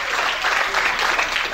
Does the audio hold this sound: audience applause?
yes